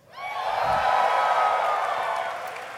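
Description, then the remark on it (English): An audience bursts into cheering and whooping for a guest who just turned 30, a dense wash of many voices that swells quickly and holds loud for a few seconds before easing slightly. “That cheer was a lie.”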